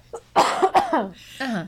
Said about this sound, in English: Excuse me. I'm gonna cough because I'm sick.